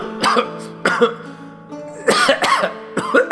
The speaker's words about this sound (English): Joff took a swallow of wine and coughed again, more violently.